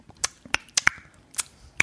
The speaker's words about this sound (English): What about tongue clicking as well?